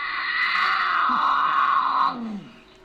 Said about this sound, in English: He says the most misunderstood sound is the infamous mountain lion scream. it's a female in heat.